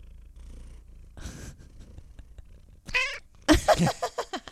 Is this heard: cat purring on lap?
yes